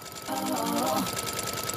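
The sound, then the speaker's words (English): A sewing machine's steady mechanical whir pulses in a quick repeating rhythm like a beat, used as theme music, with a brief sustained tonal, voice-like sound layered over it near the start. “And, quick aside, she made her own theme music using the rhythm of her sewing machine.”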